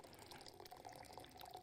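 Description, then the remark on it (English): Warm tap water runs steadily into a glass, a continuous hissing splash with bright, bubbling gurgles, even in loudness throughout with no one speaking. “Yeah, I didn't anticipate how long it would take to fill up a glass, but you know, y'all are free to talk amongst yourselves.”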